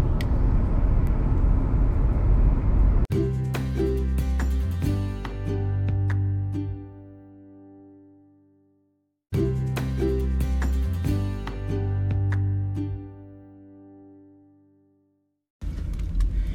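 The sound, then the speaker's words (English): A steady, loud engine-and-road rumble from inside a moving car on a commute to work fills the first few seconds, before a short tonal melody plays twice and the rumble returns briefly at the end. “we're in the car”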